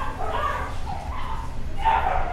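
Several dogs bark and yip in overlapping bursts, about three quick volleys over a couple of seconds, fairly loud against a steady low rumble of background noise.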